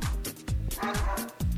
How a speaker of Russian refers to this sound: Ой, собак. Ой, собака.